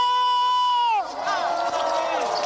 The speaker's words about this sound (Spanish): Cristo vive. Cristo vive. Cristo vive. Demos un fuerte grito de júbilo.